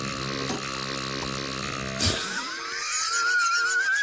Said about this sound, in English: That is the Simpsons burp of disapproval.